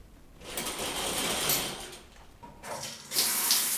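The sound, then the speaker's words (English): Shower water runs in a steady hiss, briefly easing off partway through before gushing back louder, with no voices over it. “Why do you always go straight to the shower after we have a conversation like this?”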